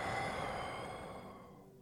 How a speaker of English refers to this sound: we'll take 3 deep breaths in through the nose and out through the mouth. Taking an inhale and exhale. Inhale and exhale. One more time. Inhale and exhale, letting it go.